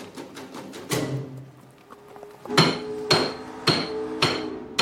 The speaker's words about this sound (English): At the same time, we hear the sound of percussion happening in the real world as Daniel is hammering a stake into the table of the Fat Cat meeting that he's at.